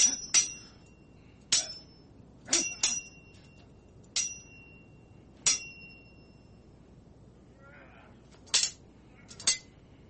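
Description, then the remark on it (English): Sword clashing sound effects: sharp metallic clashes ring out in an uneven series of about nine strikes, each a bright clang with a lingering high-pitched ring, some hits coming in quick pairs. “Where's my sword sound effects? There we go.”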